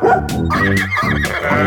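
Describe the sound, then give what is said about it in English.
A dog barks loudly, about three quick barks in a row with a tonal, synthetic, toy-like quality. No one speaks. “And the doggy.”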